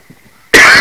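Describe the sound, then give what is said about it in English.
A single loud cough bursts out abruptly from a speaker reading Bible verses, after a brief near-silent pause, harsh and breathy, filling the rest of the moment. “Excuse me a second, I need a cough.”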